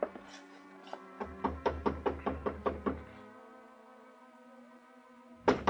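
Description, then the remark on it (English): A series of firm knocks on an apartment door, starting with a few spaced raps then a quick run of about eight even knocks over a low background hum, fading into quiet. “I paid off the taxi, walked 3 blocks to Carla's apartment house, climbed the stairs, and knocked on her door.”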